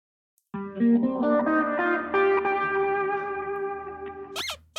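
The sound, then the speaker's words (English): A short segment jingle of bright, effects-heavy electronic tones playing a stepping melody over sustained harmonics for about four seconds, fairly loud, ending in a quick noisy swoosh. “We also wrote all new... segment jingles.”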